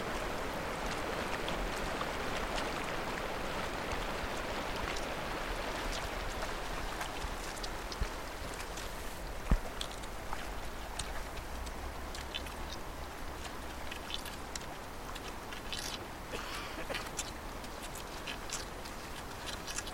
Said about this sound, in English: where the current is quite strong, and you can hear the deep rumble of rushing water and the breaking ice. You can also hear high-pitched cross-country skiers along a path by the river. So that combination of high pitch and low rumble is quite cool.